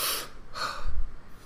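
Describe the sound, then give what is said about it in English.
Airy mouth breathing right against a microphone: two quick breaths in succession, followed by a low, muffled rumble as air buffets the mic. No talking. “Sometimes I hear the sound of my voice. I hear my breathing.”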